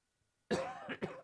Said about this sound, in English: Sorry. Stupid cough.